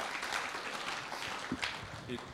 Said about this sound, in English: Three kids later. Come on, that deserves a clap, I reckon. Awesome.